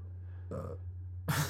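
A short, low belch comes in two brief raspy bursts, the second one rougher, over a steady low electrical hum with no talking.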